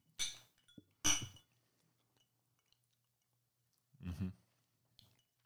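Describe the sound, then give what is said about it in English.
Glasses clink together in a toast, two bright chimes about a second apart, followed by a brief quiet pause and a softer, duller knock a few seconds later. “Bottoms up, boys. Cheers. Cheers to you too.”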